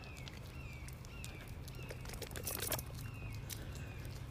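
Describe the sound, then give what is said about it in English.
A distant hawk calls overhead in a steady string of short, faint descending cries, heard against a low rumble and scattered tapping noises, with no one talking. “There's a hawk going over our head right now.”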